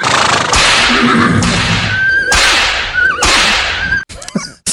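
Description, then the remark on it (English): A horse whinnies in short, wavering high cries amid loud, rushing bursts of noise, intense, with a brief scrambling clatter at the end and no talking. “I like that the horse is alive.”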